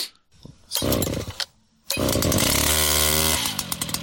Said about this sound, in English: This is a chainsaw with the bore of like a medium-sized kid's dirt bike, right? So this is the engine that could propel a 125-pound kid at right. 60 miles an hour. Well, maybe 40 miles an hour. Here we go.